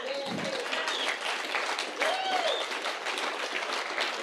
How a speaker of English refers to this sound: And I don't know what's scarier, the comment itself or the fact that it was met with such fervent applause.